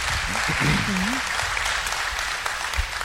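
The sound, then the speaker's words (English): A crowd claps to volunteer: a steady, dense wash of many hands, with a brief voice murmuring near the start and the applause continuing evenly throughout. “So if you clap, you've just volunteered.”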